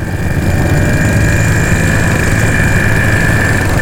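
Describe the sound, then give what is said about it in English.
A steady, loud engine drone runs throughout with a low rumbling throb and a persistent whine: a motorbike carrying a girl aged 8 and a 30-year-old man hurtles without pause through Bohemian countryside in the summer of 1964. “She's giddy with delight as their motorbike hurtles through scenic Bohemian countryside in the summer of 1964.”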